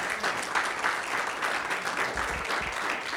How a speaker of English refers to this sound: Man, can you give him a hand clap or something?